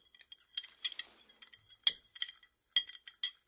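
A spoon clinks and scrapes against the inside of a glass in a quick series of light, bright taps, stirring one big spoonful of Tang drink powder into a drink, with no talking.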